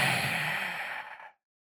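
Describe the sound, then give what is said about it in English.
A voice imitates a heavy creature's breathing: one long, raspy exhale lasting about a second before cutting off into silence, with no talking. “You hear something behind you, like a breathing, like.”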